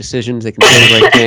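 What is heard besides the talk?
cough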